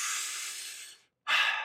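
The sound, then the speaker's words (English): A full, deep breath: a long, airy inhale of about a second, a brief pause, then a strong rushing exhale. No one speaks. “I should be breathing. Full, deep breaths.”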